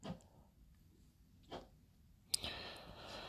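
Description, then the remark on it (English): Faint scraping of a snow shovel as someone clears snow on the pavement at street level outside: two brief scrapes, then a longer, rougher push near the end. No one speaks. “So, sorry if you hear any noise in the background. It's someone down on the street level shuffling.”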